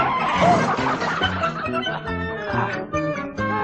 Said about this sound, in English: Oh, come here, chicken.